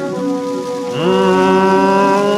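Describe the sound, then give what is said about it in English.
A voice imitates a drum roll with a buzzing, trilled sustained sound that jumps up in pitch and gets louder about a second in, then holds steady to the end. “I will do the drum roll.”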